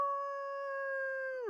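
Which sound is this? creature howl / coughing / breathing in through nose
creature howl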